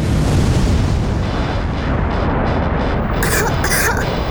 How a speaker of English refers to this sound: Nova's eyes began to glow as a radiant beam came screaming from Nova's palm. The blast barely missed Balthazar, but he and Kira were caught up in part of the explosion.